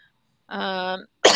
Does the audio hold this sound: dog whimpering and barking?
no